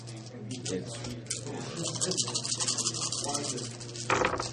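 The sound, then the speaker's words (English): Dice rattle and clatter across a surface in a quick flurry of small clicks, ending in a brighter burst of tumbling, over a low steady hum with faint voices murmuring. The dice are rolled for a check needing at least four successes. “So you can go and roll, but you need at least 4 successes to go at the same time.”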